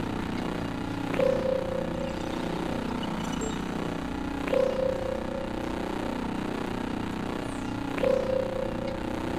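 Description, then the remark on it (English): Drones in a warehouse power up with electronic sounds: three evenly spaced activations, each a sharp click followed by a short, steady mid-pitched tone, over a constant low mechanical whirring hum. “The silence of the warehouse is broken by multiple activation sounds.”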